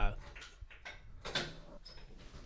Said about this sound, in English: And we have someone coming in the back door.